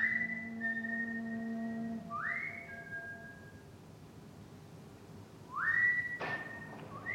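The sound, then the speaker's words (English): A man whistles a slow tune alone, long sustained notes with upward swoops between them, clear over a faint background hum; in a film scene Marlon Brando whistles the tune from the bar while walking down the street at night. “And then in the scene right after that, Marlon Brando's walking down the street at night and he whistles that tune that he was presumably just hearing in the bar.”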